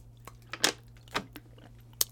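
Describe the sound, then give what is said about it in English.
Someone takes a sip of water fountain water from the Illini Union out of an Aquafina plastic water bottle: a few sharp crackles and soft gulps spread over two seconds, with a faint steady hum behind and no talking. “It's water fountain water from the Illini Union. So I will just be taking a sip of that.”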